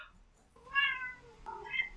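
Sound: cat meowing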